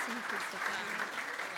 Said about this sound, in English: So let's applaud God for what he's done to give us them.